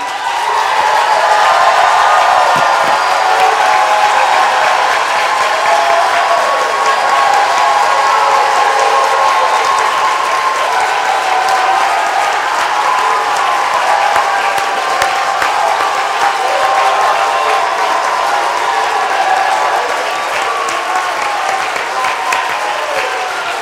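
A crowd claps and shouts with a voice of triumph, as called for in Psalm 47:1, continuously for over twenty seconds, a dense, steady roar of applause mixed with cheering voices and whoops, loud throughout with no pauses.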